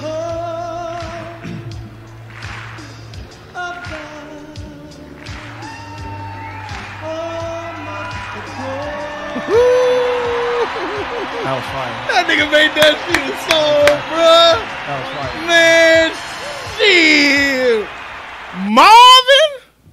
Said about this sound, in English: I like that one. I like the way we did that one. They clap like that.